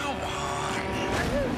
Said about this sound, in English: That's a truck, son. Don't stand in front of them.